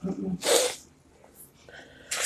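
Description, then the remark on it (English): A loud sneeze bursts out after a brief murmur of voice, followed by a quiet pause before another sharp, breathy burst starts right at the end. “That's how I'm sneezing.”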